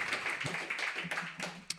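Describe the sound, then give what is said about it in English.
A crowd applauds at the end of an open mic poetry reading, a steady wash of many hands clapping at once with a few sharper individual claps standing out, moderately loud and continuous for the whole moment. “Yeah, you can applaud if you want.”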